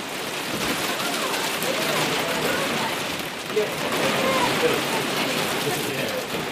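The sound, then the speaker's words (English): Heavy hail pelts down on Anchor Island in Fiordland in a dense, unbroken, loud clatter, with a steady roar of impacts and a few sharper hits standing out along the way. “So I'm on Anchor Island in Fiordland and it is hailing like nothing else, but luckily we hadn't left the hut yet.”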